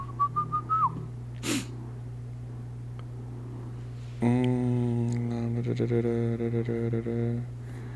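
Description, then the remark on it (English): A steady low refrigerator hum runs throughout, joined partway by a louder buzzing drone rich in overtones. A brief high whistle-like tone sounds at the start, with no talking. “Can you hear my refrigerator?”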